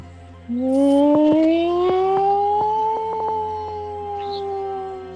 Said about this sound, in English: Game on. The sirens begin to go off. It was only a matter of time.